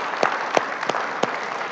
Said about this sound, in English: You know when, we can clap again, why not?